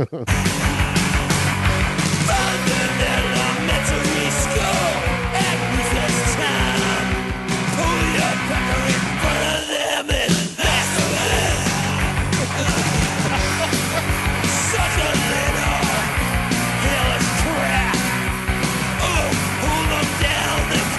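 A loud, aggressive song plays continuously with harsh yelled vocals over dense, distorted instruments. It briefly thins out for a moment about halfway through before the full band comes back in.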